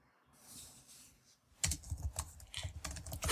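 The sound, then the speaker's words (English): Rapid clattering keystrokes on a computer keyboard, fairly loud, starting after a soft hiss and continuing in quick irregular bursts with no voices. “That can hear the keyboard.”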